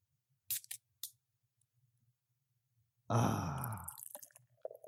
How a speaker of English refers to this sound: That's the live pouring. That's not sound effects. Pouring it into the glass.